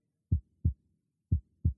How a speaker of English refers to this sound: I heard my heart beating, my eyes blinking.